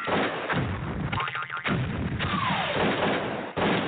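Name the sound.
gunshot sound effect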